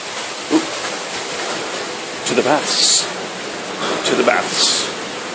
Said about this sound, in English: Oh, look, look. You can hear water. We're getting close.